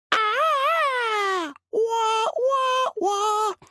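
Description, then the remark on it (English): A single voice hums a short tune, imitating intro music: one long wavering note, then three shorter held notes separated by brief breaks, steady and fairly loud. “I want to hear your best impersonation, since the listeners just heard it. Hum a couple bars.”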